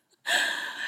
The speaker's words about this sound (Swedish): Om ni undrar vem som snarkar så är det inte Luna. Det är alltså våran Frenchie här